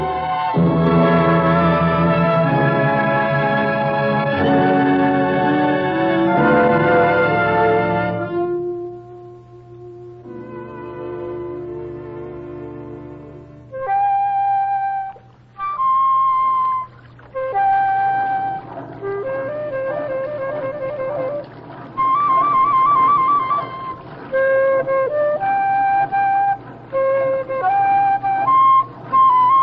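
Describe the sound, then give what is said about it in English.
Captain Wallins plays a flute: a slow melody of held, clear notes over a steady low drone, after an opening passage of fuller, chord-like instrumental music. Nobody speaks. “Play that flute of yours, don't you, Captain Wallins, huh?”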